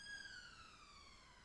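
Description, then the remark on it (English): An emergency vehicle siren wails outside during a morning prayer, a steady tone that slides gradually lower in pitch as it passes. It sounds muffled, with no one speaking over it. “We thank you for this siren call this morning, this reminder that time is running out.”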